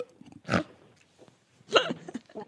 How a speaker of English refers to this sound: Are you burping? Have some respect for your wife. I wouldn't accept that in my house.